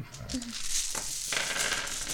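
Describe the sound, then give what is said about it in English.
Continuous rustling and clicking as hands dig through a bag of dice, small pieces clattering against each other and the fabric for a couple of seconds. “And did I not get any of that dice type out of my bag? Guess not. Hold on.”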